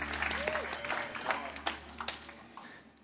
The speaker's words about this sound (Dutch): Fantastic. Thanks, band. Let's give these guys a hand. Dank je, band. Geweldig. Geef ze een applaus.